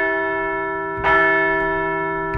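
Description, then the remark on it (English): A large bell rings with a sustained, shimmering tone, struck again about a second in for a louder, brighter clang that slowly decays, with another faint strike at the end. The bell is rung to celebrate the Phillies' 90th win of the season, a regular-season-closing 9-1 victory. “We're going to ring that bell one more time for 90 wins on the year.”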